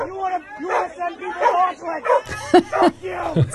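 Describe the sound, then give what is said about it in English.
A dog barks several times in quick, sharp bursts amid a noisy crowd, with people talking and shouting over one another throughout. “Even the dog doesn't like him.”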